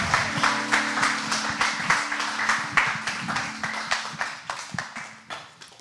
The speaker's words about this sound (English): Everyone applaud. Be happy.